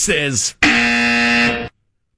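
A short vocal sound is followed by a loud, harsh game show buzzer blaring steadily for about a second before cutting off into silence.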